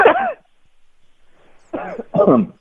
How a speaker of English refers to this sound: Is that a sneeze? No, I'm trying to cough into air.